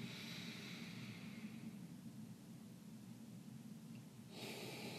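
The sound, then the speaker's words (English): Slow, deep breathing during a guided meditation, soft: a long airy breath fades out, a quiet hush lingers, then another breath begins near the end. No one speaks. “Noticing the breath as it rises, and it falls.”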